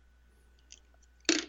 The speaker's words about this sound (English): I dropped my pencil.